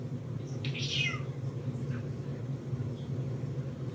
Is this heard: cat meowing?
yes